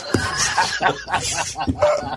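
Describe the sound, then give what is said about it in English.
A man coughs repeatedly in a rough, uneven fit, with about half a dozen harsh bursts coming in quick succession over a couple of seconds. “Ladies and genitals, when cancer man there's stopped coughing”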